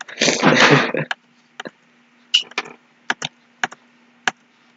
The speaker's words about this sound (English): You can hear gunshots. Yeah. Wait. Nah, it's not gonna work. That's not gonna sound like gunshots, you idiot. That's a lighter.